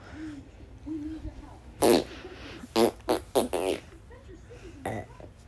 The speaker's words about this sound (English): Not like that burping, whatever.